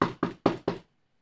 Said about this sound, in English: Okay, Rabbi, let me knock on the door. Hello?